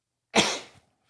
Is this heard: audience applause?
no